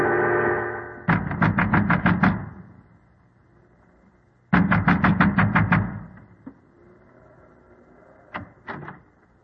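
A man in an oilskin and gigantic boots pounds his fist on the door of a windmill by the sea dikes at night, in two loud, rapid flurries of about eight heavy blows each, followed after a pause by two or three final thumps. A low rumble runs underneath, with no voices.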